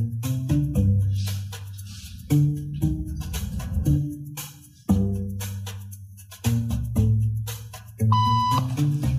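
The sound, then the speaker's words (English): A short electronic beep tone, the signal for people to stand up in a social conformity experiment, sounds clearly near the end, riding over steady background music with deep, sustained low notes and no talking. “Beep means stand up.”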